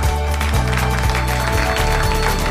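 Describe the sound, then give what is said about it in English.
A live audience at an evening event at Earl Palmer Ministries applauds steadily, many hands clapping in a dense, continuous wash of sound that holds at an even, fairly loud level throughout, with a low musical tone humming beneath it. “Thank you for your spontaneous applause here tonight.”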